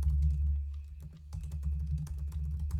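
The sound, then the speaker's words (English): Rapid, uneven keyboard clicks as someone types to look up Golden State Warriors stats on Basketball Reference, a flurry of typing that pauses briefly before resuming, over a steady low hum. “You can hear me typing.”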